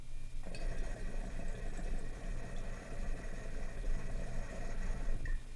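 Steady gurgling and bubbling of clean water draining through glass rigs that have had no dabs taken through them, forming transparent vortexes with big bubbles, a continuous churning rush with a faint higher hiss above it, lasting throughout with no voices.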